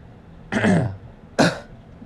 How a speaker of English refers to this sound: Excuse me. Excuse us. We are coughing.